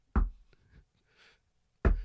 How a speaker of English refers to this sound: Someone chopping at the tree.